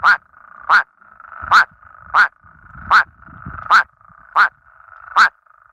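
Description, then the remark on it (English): Male plain spadefoot toads sing in ponds, giving eight short, nasal, duck-like quacking calls at a steady, even pace, each a loud bright burst over a continuous mid-pitched droning chorus, with some faint low rumbling partway through. “These ones actually sound like little ducks. They make these short quacking noises.”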